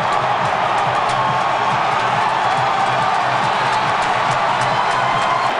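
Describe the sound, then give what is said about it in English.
A large stadium crowd at a Cardinals baseball game roars and cheers continuously after Freeze's hit off the right field wall ties the game 7-7, a loud, dense wall of voices with no pauses, sustained at full volume throughout. “And listen to this crowd. They have gone banana.”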